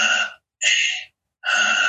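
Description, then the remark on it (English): Three loud, forceful breaths in a breathing exercise, deep audible inhales and exhales separated by short pauses, with no talking. “For now, dopamine activation, breathing 5 minutes. Deeply in, letting go. First minute like this.”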